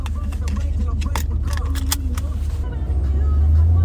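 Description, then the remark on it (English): A car engine hums steadily from inside the cabin while driving, a low drone that swells slightly near the end, with scattered jingling and clicking on top. “That's what the car sounds like. Just humming.”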